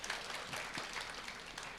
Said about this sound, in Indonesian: Berikan tepuk tangan buat Tuhan, saudara.